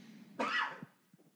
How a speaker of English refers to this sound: Excuse me, I keep coughing because I think I have allergies or something. It just came on, like, today, like, during the day. All right. I apologize for that.